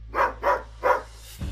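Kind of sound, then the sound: animal, dog barking frantically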